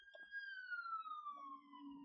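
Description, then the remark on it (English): A police siren wails outside, a single steady tone sliding slowly downward in pitch as it passes, faint beneath a low background rumble. “Well, thank you, Siren, for breaking up the flow of the conversation.”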